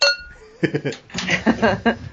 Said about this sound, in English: Well, you know, I've got my brewer's cup here of water, so there we go. Did you hear the clink? I heard it.